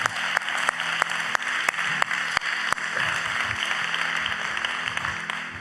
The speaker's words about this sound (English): Now, if this was Pastor Smith coming across with this point right here, you would do more than just be golf clapping, all right? Come on and put your hands together today.